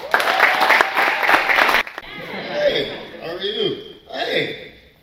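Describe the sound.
A round of applause from a crowd, dense steady clapping for nearly two seconds that stops abruptly, followed by a person talking.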